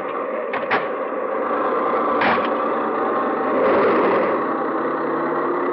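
A car engine idles steadily, with a couple of sharp mechanical clunks breaking through the continuous rumble as the car is put in gear.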